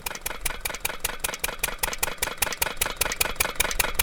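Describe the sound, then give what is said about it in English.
A borewell pump in the salt-producing desert of Kutch runs steadily, pumping salty groundwater from hundreds of feet deep into pans above ground, with a harsh, grating mechanical drone pulsing in a fast even chug of about five beats per second throughout, with no voices. “The sound of the borewell pumping is constant and grating, but this process is necessary for collecting what some argue is a superior kind of salt.”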